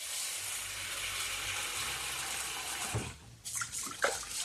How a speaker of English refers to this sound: But I'm going to add about 120 grams or half a cup of raw white rice into my bowl. And we're going to wash it underwater until the water runs clear.